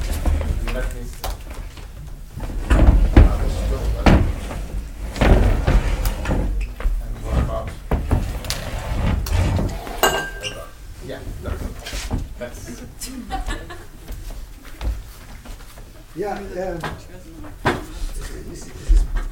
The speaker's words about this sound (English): Apparently we have to move our chairs to the side.